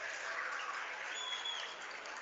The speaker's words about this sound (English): Both sides applauding their efforts here.